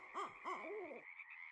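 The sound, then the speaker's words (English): An owl call from the bird-call CD with the book The Owl and the Woodpecker, recorded by Martin Stewart of naturesound.org: a quick run of about four hooting notes, clear, over a steady high background hiss that continues after the calls stop. “Paul Banik's book, The Owl and the Woodpecker, includes a CD of more than 40 bird calls for identifying these species in the field.”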